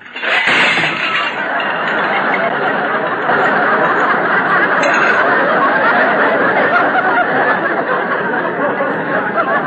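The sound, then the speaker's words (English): A stack of clean dishes is pushed off a drain board and crashes down with sharp clinks and shattering at the start, swallowed by loud, sustained laughter and chatter that roars on for several seconds. “Rochester, why'd you drop those dishes?”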